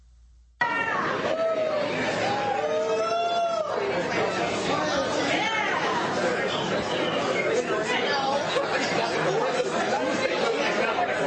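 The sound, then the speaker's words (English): Steady background chatter in a Detroit restaurant during Joe Biden's in-person visit: many overlapping voices blend into a continuous murmur, with dishes or utensils faintly clinking now and then, and no single voice standing out or cheering. “So barely, just basic restaurant noise.”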